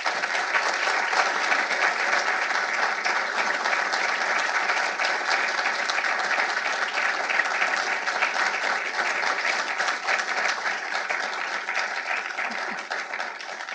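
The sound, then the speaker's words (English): Sustained audience applause welcoming Judge Edith Jones, this year's Joseph Story Distinguished Lecturer: a dense, steady wash of many hands clapping at an even loudness for about fourteen seconds, tapering only slightly at the end. “Applaud now. You don't have to applaud later.”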